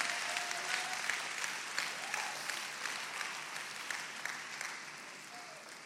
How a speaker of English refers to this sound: Clap your hands to the Lord tonight.